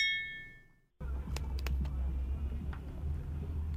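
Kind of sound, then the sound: household object, drink containers clinking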